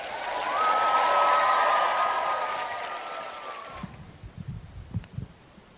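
A round of applause for a special presentation, dense steady clapping with a sustained whistle over it, lasting about four seconds before cutting off, followed by a few soft low thumps.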